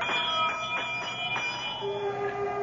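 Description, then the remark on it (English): A pulled bell at the great door of Carriclena rings out in a few quick struck peals, its bright metallic tones overlapping and lingering before slowly fading, with no voices. “I'm standing in front of the great door of Carriclena, and I know that everything's going to come clear at long last. I reach out and pull the bell.”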